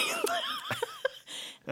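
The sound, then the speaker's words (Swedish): A handful of short, sharp coughs burst out at uneven intervals, mixed with breathy, laugh-like voicing between them. “Jag ska bara hosta lite.”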